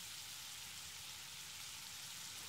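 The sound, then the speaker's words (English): Lemon sizzles in a hot pan, a continuous bright hiss with fine crackling texture that holds steady and fairly soft throughout, with no one speaking. “Such a beautiful sizzling sound.”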